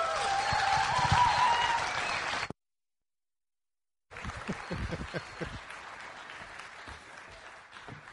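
An evening church audience in Petaluma applauds to welcome their senior pastor, dense, steady clapping, breaks off into about a second and a half of silence, then resumes with sharper, more scattered claps and some cheering.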